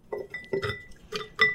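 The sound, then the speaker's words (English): Trimmed carrot or beet pieces drop into a glass jar, making a quick series of four or five bright clinks and thuds against the glass, moderately loud, with no talking. “And into the jar those go.”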